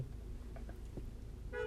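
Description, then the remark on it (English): A car horn in a parking lot gives one short honk near the end, heard over a low, steady rumble of street noise. “Who's honking?”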